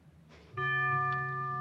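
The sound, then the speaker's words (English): A quiz show bell on Groucho's quiz show rings out once, signaling a wrong answer, and holds a loud, steady tone for over a second, following a brief quiet stretch. “The bell is tolled.”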